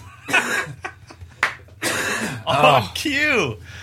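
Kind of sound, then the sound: human body sound, cough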